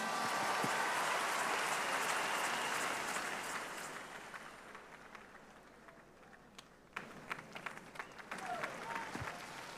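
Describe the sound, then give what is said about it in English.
An audience claps for the Lord at Shiloh 2021, in a loud, dense burst of applause that gradually thins out, leaving scattered individual claps toward the end, with some voices faintly mixed in. “Give the Lord a clap.”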